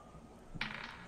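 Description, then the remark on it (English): Dice clatter onto a hard tabletop during a tabletop game roll, a sudden rattle followed by a few quick bounces and skitters before settling. Fairly quiet, with no voices. “I think that it was a 2 on the dice for a 10 total.”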